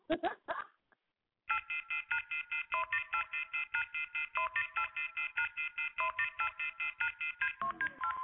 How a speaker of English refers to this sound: And when I first heard this, I thought somebody's phone was off the hook. But the song is off the hook.